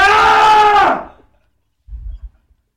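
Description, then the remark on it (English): A man lets out a loud, strained scream lasting about a second, trailing off sharply, followed by a short stretch of quiet and a brief low rumble. “But you want to scream? Just scream.”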